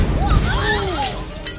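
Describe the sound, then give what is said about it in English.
A loud explosion effect: a deep rumbling blast that stays dense and noisy for over a second, with warbling, sweeping tones and crackling bursts running through it. “Now, cue explosion.”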